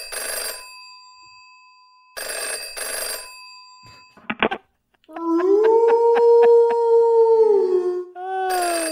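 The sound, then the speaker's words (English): A telephone rings in three bright bursts, followed by a brief clatter and then a drawn-out wolf-like howl over a jingly musical sting, loud; it is the jingle introducing the Wolf Hotline segment for League of Legends fans. “You know, I don't think Riot Games will be having a snitch hotline a la the NBA, but let me introduce you to something, the Wolf Hotline.”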